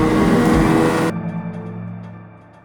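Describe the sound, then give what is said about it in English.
A pickup truck engine drones, with a loud rushing roar that cuts off abruptly, leaving a steady low motor hum that slowly fades. No one speaks. “Alright, we can just play it in the truck. Slow down.”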